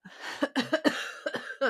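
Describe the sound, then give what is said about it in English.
A fit of rough, raspy coughing, several harsh bursts in quick, uneven succession over under two seconds, with no talking. “I think I'm going to need some new cough drops soon, so I think we should probably call it.”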